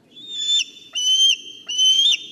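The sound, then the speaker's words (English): A bald eagle gives three high, thin whistled calls, each about half a second long with a slight pitch bend, repeated steadily over a soft low rumble. “Benjamin Franklin didn't want this bird to be our national bird because these birds steal prey from other animals by chasing them down”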